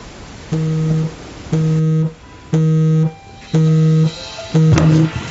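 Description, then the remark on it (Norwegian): An electronic alarm beeps in five evenly spaced, steady tones, each lasting about half a second with a low buzzy pitch and strong harmonics, loud and regular with brief gaps between. “Det ikke min alarm.”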